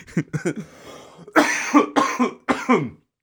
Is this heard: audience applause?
no